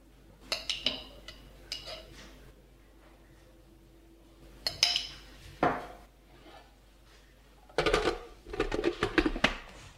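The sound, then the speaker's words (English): A spoon scrapes and clinks against a 500 gram jar in short, uneven bursts as thick tahini, about half the jar, is scooped into a blender. A denser flurry of taps comes near the end. Nobody speaks. “So I'm just gonna add it into the blender.”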